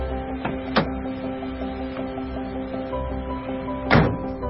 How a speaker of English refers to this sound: Sweetie, open the door. Get the door. Open the door, sweetie.